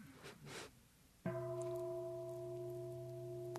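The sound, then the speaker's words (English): A single meditation bell is struck once and rings out with a steady, resonant tone whose layered overtones hum evenly without fading, after a brief stretch of soft rustling. “You know, or I ring the bell, get ready for contact.”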